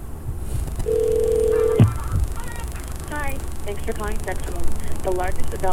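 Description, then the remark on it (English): A phone line rings once with a steady, low electronic ringback tone lasting about a second, then cuts off as a tinny recorded voice starts speaking over the line. “Okay, ooh, it's ringing.”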